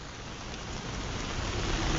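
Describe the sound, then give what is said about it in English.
Steady rain falls, a dense, even hiss of drops spread across the whole range, growing slightly louder over two seconds with no voices or other distinct sounds. “And then, as this day is a rainy day and we have to make it somewhat concise,”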